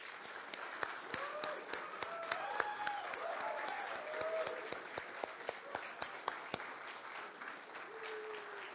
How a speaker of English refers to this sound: So today we'd like to show our appreciation and give you a round of applause.